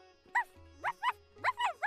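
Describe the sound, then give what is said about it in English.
A human voice imitates a dog during a yoga practice, giving a quick series of about six short, bright woofs in bouncy pairs, fairly loud, with no other talking. “And maybe a woof woof here too.”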